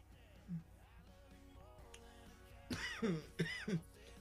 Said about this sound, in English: Remember, don't cough on the fucking microphone. It's unprofessional. If you cough in the mic, it's totally unprofessional after a dab. If you cough in the mic, it's unprofessional.